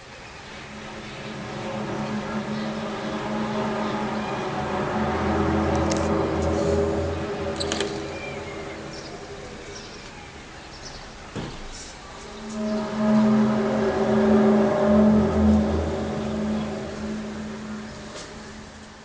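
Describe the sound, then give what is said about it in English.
A mysterious low, droning hum from the sky with layered tonal bands swells up, fades, then returns louder over a steady wash of background noise, with no voices. “Anyway, after that, many people from different countries heard similar sounds and a hum.”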